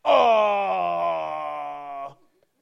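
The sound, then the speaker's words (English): A voice imitates a truck's jake brake: a loud, sustained, buzzy drone with a rich stack of harmonics, held steady for about two seconds before cutting off abruptly. “Sound like a truck Jake braking on the interstate.”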